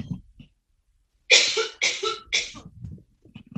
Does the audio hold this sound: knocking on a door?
no